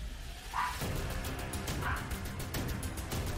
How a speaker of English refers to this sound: Yeah, that's not him. That would be my dog.